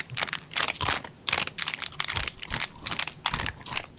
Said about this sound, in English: Better than this bottle. Anything's better than this bottle. Yeah, crunching on a bottle? That's skill.